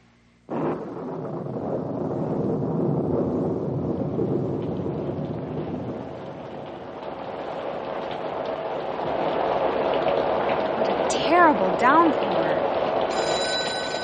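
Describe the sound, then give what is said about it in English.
A sudden, loud roar of a cloudburst downpour and wind starts abruptly and keeps up steadily, with low thunder rumbling underneath; near the end a short ringing tone sounds over the storm. “Oh, dear, we're going to have a storm.”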